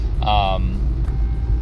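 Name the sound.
car interior road rumble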